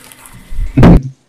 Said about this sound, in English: Give me 1 second. I'm gonna go close my door. Get the mother-in-law here, and I don't want to keep her up.